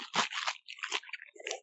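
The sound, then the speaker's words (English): Close, loud slurping of a drink right at the microphone: a few wet, hissy sucking bursts in quick succession, with no talking. “Oh my god, and you're slurping into the microphone.”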